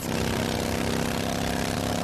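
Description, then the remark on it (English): A motorcycle engine runs steadily and loudly, a continuous droning rumble with a slight rhythmic pulse and no voices. “And this is how that same commercial sounds on your motorcycle.”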